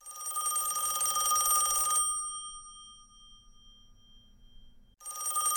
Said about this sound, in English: Well, wait a minute. Is the phone actually ringing this week? It is. It is. Let's see who's on the rotary.